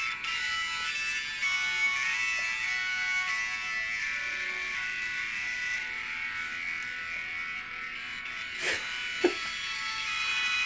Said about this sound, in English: Could you imagine sitting in the crowd and that opens up the show? And you know, as a musician, that this is very bassy for an organ. Yes. So it's going to like shake your chest.